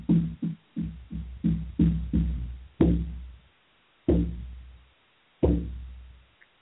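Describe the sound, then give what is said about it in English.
A shamanic frame drum is beaten, first in a quick run of booming strokes, then three slower, heavy beats, each leaving a long, deep, fading resonance. No voices are heard. “And I will bang my drum 3 times and you'll be back with me here.”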